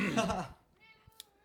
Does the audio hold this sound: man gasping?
no